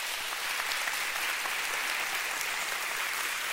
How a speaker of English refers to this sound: I want to prove to you it's measuring your frequency. I want everyone to clap as loud as you can right now. Go.